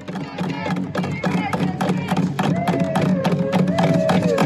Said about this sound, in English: Here, guys, roll that clip where they're banging. They love banging things. Everything's a drum to these people. Here, go with it.